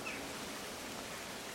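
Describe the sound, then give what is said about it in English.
Rain falls as a steady, even hiss with no distinct drops standing out, fairly soft and unchanging throughout, with no voices. “That was your rain.”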